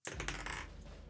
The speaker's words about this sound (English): Right, I'm grabbing my dice. Dice time. I'm going to roll initiative for Aerithor.